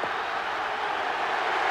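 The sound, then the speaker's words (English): A large cricket crowd boos at the finish of the match after an underarm delivery is bowled, a dense, steady roar of many voices that holds loud and unbroken for nearly two seconds, with no individual words standing out. “Disappointed Brian McKechnie, the crowd boo, and it's all over.”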